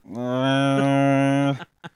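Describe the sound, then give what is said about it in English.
A person voices a long, drawn-out meow imitating the sound a cat makes outside a door, a steady, loud, low-pitched wail lasting over a second, followed by a brief short sound. “It's like meow.”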